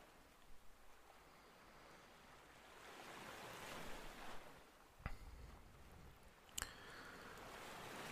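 Gentle ocean waves wash and lap onto sand in soft, rolling swells, a steady hiss of surf with a couple of brief sharper splashes, heard alone with no voices.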